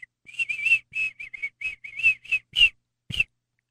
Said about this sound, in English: No, just do your whistle. Okay.